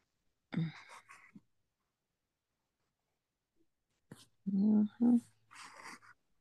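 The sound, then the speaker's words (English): A dog named Toby barks a few times in the background as parents play with him, first one short bark, then after a pause a quicker cluster of yelps and barks, fairly faint. “parents keep playing with Toby and making him bark.”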